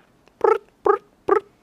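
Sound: voice imitating crickets chirping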